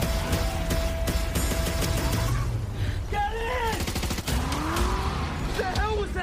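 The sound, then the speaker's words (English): A loud, dense film explosion with rapid gunfire-like cracks filling the whole scene, while voices shout over the continuous roar. “There's your explosion.”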